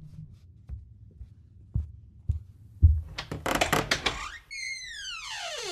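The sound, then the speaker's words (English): A handful of dull, low knocks on a door at an uneven pace, followed by a swelling burst of rough noise and a long falling whistle-like sweep. No voices. “Yeah, I think there's someone knocking at the door.”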